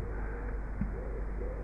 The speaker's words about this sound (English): Listening to our internal voices, just as we listen to the rooks and the pigeons.